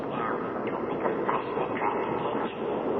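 A train rolls steadily along the rails, a continuous rumble with faint rhythmic clatter from the wheels running underneath, no voices over it.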